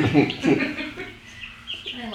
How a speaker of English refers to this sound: I'm by the chickens.